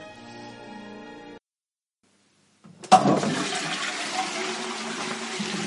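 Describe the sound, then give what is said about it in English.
A toilet flushes loudly, opening with a sharp clunk before a sustained rush of swirling water that keeps going steadily, preceded by a brief bit of tonal music and a moment of silence. “This episode was recorded partly on the toilet. Any splash noises are purely unintentional.”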